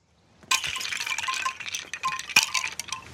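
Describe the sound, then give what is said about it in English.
A sudden burst of clattering wooden wind chimes, like Mr. Miyagi's door chime from the Karate Kid films, as someone walks face first into them: many small knocking tones jangling together for a few seconds, swelling again with one sharper clack before settling. No voices. “He went face first into the Miyagi like wooden door chime thing.”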